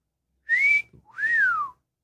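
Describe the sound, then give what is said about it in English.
A loud wolf whistle at the start of a song, in two parts: a sharp rising note, a brief gap, then a longer swooping tone that rises and falls away, with no voices. “it literally starts with a catcall or a wolf whistle.”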